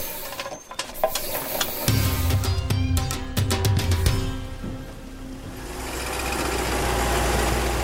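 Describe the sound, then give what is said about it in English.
A forest officer's vehicle on patrol along a rarely used forest track: the engine hums steadily while loud clicks and rattles come through, as if bumping over rough ground, before fading into a broad, even rushing noise. No one speaks. “Forest Officer Mistry drives along a rarely used track.”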